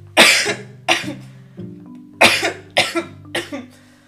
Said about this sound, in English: Okay, we'll do that. I'm going to have a coughing fit.